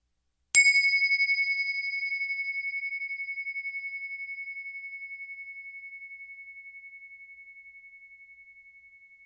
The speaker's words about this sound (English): First, let us settle in with the sound of the bells. Here they are.